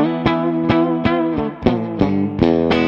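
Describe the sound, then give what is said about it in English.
A distorted electric guitar, played through a Mesa Boogie Lone Star amp, plays a quick rock solo lick, sustained notes struck in a steady, bouncing rhythm with heavy harmonic grit and a touch of reverb, loud. “And then bringing it down, the majority of my solos are in this position, you know, it's that rock.”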